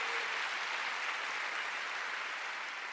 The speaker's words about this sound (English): Oh, come on, give Jesus a big hand. Give the Holy Spirit a big clap. Hallelujah.